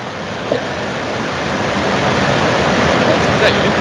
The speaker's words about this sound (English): No, it's pissing down rain, mate.